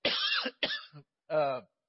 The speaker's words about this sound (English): As soon as I said that, a cough came in. So I probably caught something in the early service from being at the door.